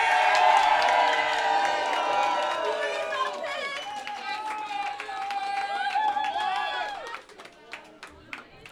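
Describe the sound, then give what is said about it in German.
A loud crowd claps and cheers together for a young woman's performance, whoops and shouts rising over dense applause for about seven seconds before it thins out into a few scattered claps. “Ja, Mann, mach nochmal einen fetten Applaus für die junge Dame, das hat sie richtig geil gemacht.”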